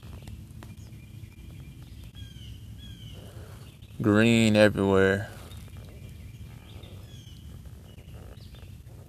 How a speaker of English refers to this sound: Out here enjoying God's creation and paddling around, doing some fishing. It's a beautiful morning. Birds are chirping. Water's nice and calm.